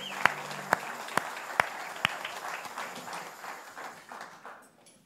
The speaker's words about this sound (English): Good morning. Come on, yeah. Let's have a clap one more time. Come on, Lord Jesus.